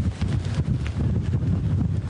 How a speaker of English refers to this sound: As you can see, the wind is picking up a little bit.